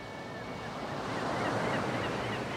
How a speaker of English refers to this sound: The age-old sound of the sea. The same sound folks are hearing right now up around Penobscot Bay and Marblehead, on the Chincoteague Inlet, down in St. Bernard Parish and clean over to the west coast, by Guadeloupe and Carmel,